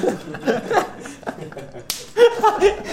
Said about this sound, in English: You slapped your leg. That thing's an echo in there. Woo! You see that spike on there? That's your leg being slapped.